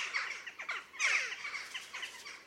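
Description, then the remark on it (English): Rapid series of short, high-pitched chiak and chiok calls of a jackdaw, sharp chattering notes tumbling over one another, with a louder burst in the middle and no voices. “The calls are short and high-pitched compared to those of the crows. The most characteristic are a happy chiak and chiok.”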